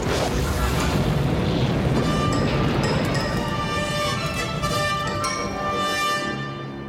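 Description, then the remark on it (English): A loud explosion, following energy weapons fire, fills the scene with a deep, sustained rumbling roar and crackling debris, holding steady for several seconds before slowly easing off at the end. “Sensors report energy weapons fired. Captain Solo's location, General, followed by an explosion.”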